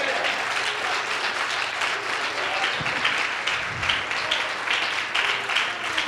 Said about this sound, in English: Come on, clap your hands for freedom.